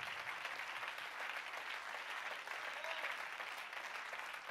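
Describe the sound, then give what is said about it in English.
An audience claps in praise to the Lord during a sermon, a dense, continuous patter of many hands blending into an even wash of applause that holds at a constant level throughout, with no voices standing out. “Why don't you clap your hands unto the Lord and give him praise?”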